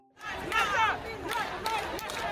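Loud, dense crowd noise from a Black Lives Matter protest of thousands in London's Hyde Park: many voices shouting and calling out together in a continuous roar, with overlapping raised cries rising and falling throughout.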